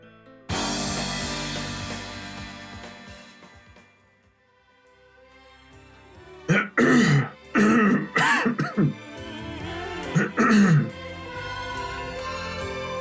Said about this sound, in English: Something like hacking over this beautiful song. We gotta get you the cough button. You could just edit that out.